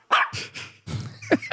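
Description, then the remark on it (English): A small dog yaps several times in quick succession, fairly loud, the sharp high-pitched barks tumbling one after another with no talking. “Anything 3 points and below, you're getting the small dog.”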